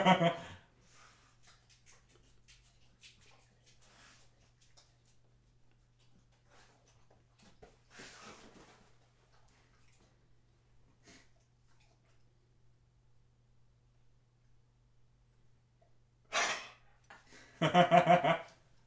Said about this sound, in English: This is loud. What, the slurping? Yeah. It is loud, yeah. And I promise you, doesn't usually happen.